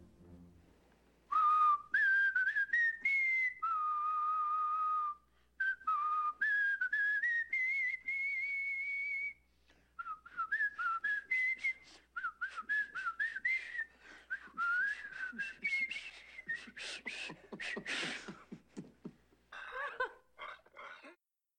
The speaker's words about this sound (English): When they're sorely pressed, they whistle for a spell, and whistling seems to brighten up their day. And that's what simple folk do, so they say. They just whistle.